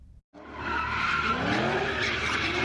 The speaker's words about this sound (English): We've heard of illegal sideshows taking up intersections with tires screeching, skid marks, and smoke in the air.